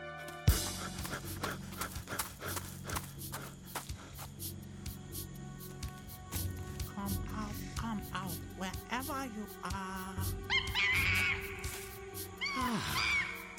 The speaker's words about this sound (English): It was only a monkey.